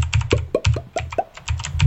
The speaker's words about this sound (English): Can you guys hear my super clacky keyboard? Yeah. Yeah. It's incredibly satisfying.